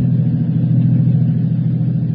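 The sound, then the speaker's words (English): A car engine rumbles steadily at an even pitch while driving from the office, with another car following behind, a continuous low drone with no breaks or changes in speed. No voices are heard. “That car is still back there. I'd swear it was following us.”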